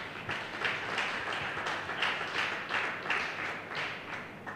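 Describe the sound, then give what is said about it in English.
A church crowd claps their hands for Jesus in sustained, steady applause, a dense wash of many hands with a loose pulsing rhythm, with no voices. “Let's clap our hand for Jesus.”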